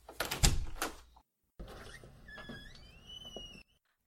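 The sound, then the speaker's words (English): A door latch clunks and rattles, then after a brief pause the door swings open with a long, squeaky hinge creak, moderately loud, with no voices. “Open the door for him”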